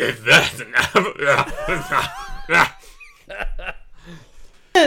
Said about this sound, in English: I had a coughing fit.